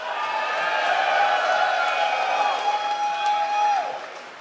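A crowd cheers and claps steadily for several seconds, a loud dense roar with a sustained whistle-like tone riding on top before it tapers off.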